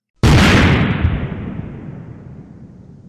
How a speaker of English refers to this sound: We have a Florida man lights off fireworks inside Wendy's restaurant.